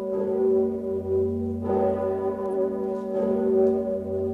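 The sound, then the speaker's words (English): The massive Old Sigismund bell of Kraków, cast from cannons, tolls in deep, sustained booming strokes, each strike blooming into a rich low hum with layered overtones that swell and linger continuously, with no voices. “Old Sigismund. Gegossen aus Kanonen. Cast from cannons.”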